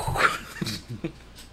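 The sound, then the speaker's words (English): A dog, off the leash, gives a few short, sharp barks in quick succession, moderately loud, with brief gaps between them and no talking. “That's my daughter's dog. She's off the leash.”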